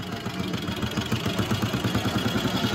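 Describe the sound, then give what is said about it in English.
A motorcycle engine idles, its steady, rapid low putter throbbing evenly throughout with no one speaking. “However, by 1917, the modern era had indeed arrived, and Roy found, much to his delight, that he would carry out his dispatch duties aboard a motorcycle.”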